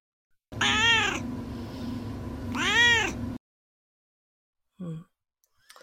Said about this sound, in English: Now it is time for Duarte's Corner, where my cat Duarte gives his opinions about the book.